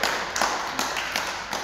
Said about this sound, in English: My amabearers leo wako inde msijali sana. These are amabearers. Let's clap for amabearers to fadhali.